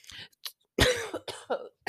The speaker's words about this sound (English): That wasn't an allergy cough. That was a choking on spit cough, and I'm sorry.